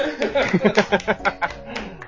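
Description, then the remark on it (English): A short round of applause: a small group claps in quick, fairly even bursts for about two seconds, with light chuckling mixed in beneath the claps. “Guys, give the listener a hand, please. Please clap.”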